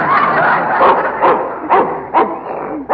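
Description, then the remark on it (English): A vicious Russian wolfhound barks fiercely and repeatedly, five or six sharp, loud barks at an uneven, agitated pace, without any talking. “How do you like my new dog?”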